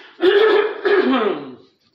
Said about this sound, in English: Give me a second to get there while I clear my throat again.